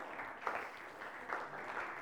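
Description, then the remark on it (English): An audience, asked to clap for the men in the house, claps in a thin, low-energy way, a soft, steady patter of many hands with a couple of slightly sharper swells and no voices. “Man, you're not clapping very well.”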